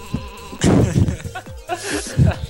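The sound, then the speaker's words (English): A flock of sheep coming over the mountains bleat over one another in a loud, overlapping chorus, wavering calls rising and falling in quick succession, with a faint buzzing hum underneath. “There's a whole flock of sheep coming towards us.”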